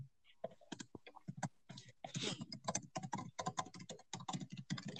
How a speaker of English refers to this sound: You're aggressive typing. My little MacBook.